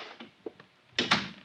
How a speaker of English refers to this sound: I said close the door.